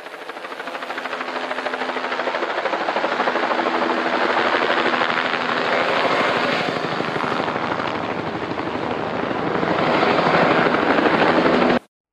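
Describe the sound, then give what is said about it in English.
Soldiers land a helicopter on a beach, its rotor blades thumping in a rapid, steady chop over a loud engine whine that holds strong for the whole stretch before cutting off abruptly. “And then all of a sudden, out of nowhere, these soldiers land a helicopter.”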